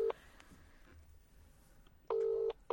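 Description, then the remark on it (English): A phone line rings out on an outgoing call placed late, just past 11 o'clock: short, steady electronic tone bursts separated by a quiet gap of nearly two seconds, heard clearly through the handset with no talking. “So let's just give him a little call on the old telephone.”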